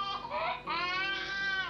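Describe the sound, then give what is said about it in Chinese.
A baby boy who has just been woken up wails loudly, one strained cry breaking off briefly before a second sustained, rising wail carries on without any talking. “吵醒個仔啦！喂，睇下佢啦。”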